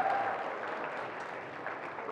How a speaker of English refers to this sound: All right, come on. Give them another round of applause. Act like you're happy.